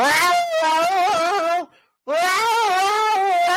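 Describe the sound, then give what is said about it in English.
Two long, drawn-out yowls from a female cat in heat, loud, each wavering in pitch, separated by a brief silence. No talking. “Yeah, she yells. She yells like you nothing you've ever heard.”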